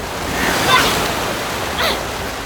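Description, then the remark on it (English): Two splashes of a paddle dipping into river water, set against a steady, broad rush of moving water, with no voices. “You know, is this like a river of tears from the people that I've hurt or... Tears from the what? Nothing. I'm paddling.”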